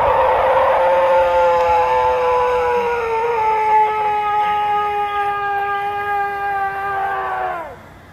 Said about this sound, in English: It sounds like an elk in heat or something. I was thinking it could be like mating season for like a deer or an elk or something. Yes. There's like a heftiness in the chest the way it sounds